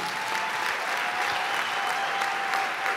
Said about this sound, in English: Let's clap hands for him.